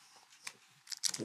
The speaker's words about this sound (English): Was I not supposed to chew it yet?